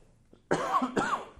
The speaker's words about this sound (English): Hold on one second, I'm going to cough.